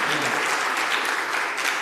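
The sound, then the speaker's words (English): A church crowd claps steadily for a volunteer who ran the church picnic, a dense, even burst of many hands applauding at a loud, constant level for a couple of seconds. “She needs a clap. She needs a big clap.”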